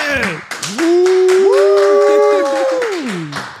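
An audience of Texans in Houston claps steadily while loud, drawn-out whoops and cheers rise and fall in pitch above the applause, lasting a few seconds.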